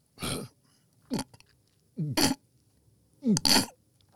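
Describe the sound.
A voice imitates people belching and retching after drinking a second cup, in four short, harsh bursts, some rough and noisy, others gurgling and voiced, with brief pauses between them, fairly loud.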